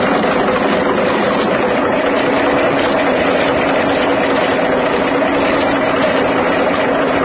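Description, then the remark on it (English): A small boat's motor runs steadily and loudly in fog, a continuous droning rumble with no breaks and no voices over it. “This little trap can run circles around anything Stanley will be able to lay his hands on.”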